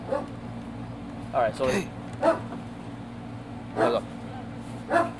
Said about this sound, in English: Listen, everybody. You're going to hear a dog.